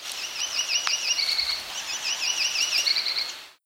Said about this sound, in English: This was the Yellow-Rumped, also known as the Myrtle Warbler. In the background, there was an American Redstart.